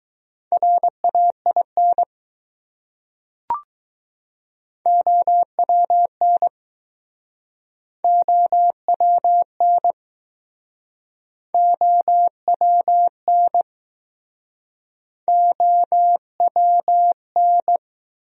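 Morse code practice of common words at 15 words per minute: a steady mid-pitched tone keyed into crisp short and long beeps, sent in five separate word groups with pauses between, plus one brief click early on.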